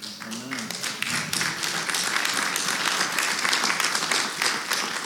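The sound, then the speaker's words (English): Scattered, half-hearted applause from an audience at MCC, a loose patter of hand claps at moderate volume lasting several seconds, with a brief voice murmuring at the start. “Apparently, that was a pretty lame clap.”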